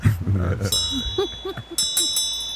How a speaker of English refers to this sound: Wow. You know what? Protect your ears. And this bell does not mean the same thing to me as it means to you.